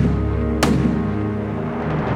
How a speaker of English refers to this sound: Gunshot.